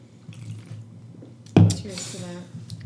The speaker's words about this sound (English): I need you to take a big swig of the drink with me as we cheers to the end of